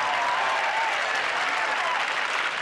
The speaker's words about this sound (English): Yeah. Crowd goes nuts. The applause go on for 30 seconds. People go apeshit.